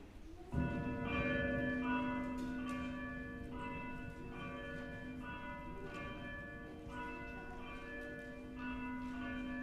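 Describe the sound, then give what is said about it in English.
Church bells peal steadily after a sudden start, calling people to worship at the start of a church service, strikes overlapping into a rich, sustained ringing that carries on throughout, fairly loud and resonant, with no voices. “Please stand, and the bells will call us to worship.”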